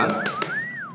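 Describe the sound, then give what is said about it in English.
A person whistles a single wavering tone that rises and dips before gliding downward, with two short clacking taps sounding underneath it. “doing the whistles in the background.”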